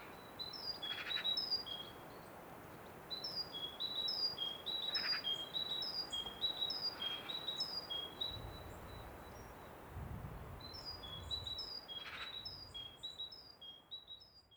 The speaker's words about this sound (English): That great tit was up in the woods behind us, and I recorded him for a while, and the next recording is a kind of compilation, so it was one long recording, but I've kind of condensed it a bit, and I guess it just is an example of the variety